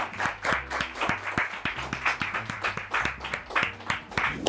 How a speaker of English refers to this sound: All right, that was a bit fast for a slow clap. I guess people are excited.